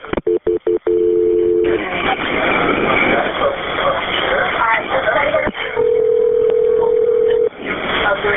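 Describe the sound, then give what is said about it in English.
Quick dialing clicks and beeps as a 911 call is transferred to McKinney fire and EMS, then a steady phone ringing tone over a hissy, muffled line; after a few seconds of line noise, another long, even ring sounds. “I'm going to put you to McKinney. They provide fire and EMS. Don't hang up, okay?”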